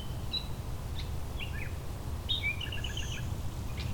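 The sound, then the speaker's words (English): A blue-winged warbler sings outdoors, its thin, buzzy high notes coming in short bursts over steady low wind or traffic rumble, with other scattered chirps mixed in. No one speaks. “There's our blue-winged warbler.”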